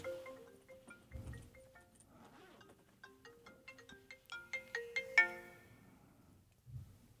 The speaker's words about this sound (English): I think that's my cell phone. Okay. Maybe you can hear just, it? Yeah. But just if you can just mute it, that's great.